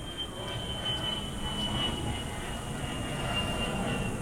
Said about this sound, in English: The second part of the reading, sorry guys, there's airplanes flying over. I'll wait a second.